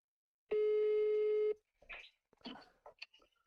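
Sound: telephone ringback tone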